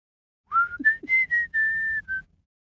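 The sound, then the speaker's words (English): A person whistles a short tune by blowing air through a small gap between their lips: a rising first note, a few quick chirpy notes, then a long steady tone and a brief final note, clear. “I'm making a noise by putting my lips together, making a small gap and blowing some air through the gap.”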